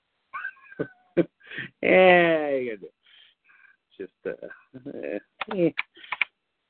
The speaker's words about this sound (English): You know, that's your keyboard. Your keyboard is loud as fuck. It is.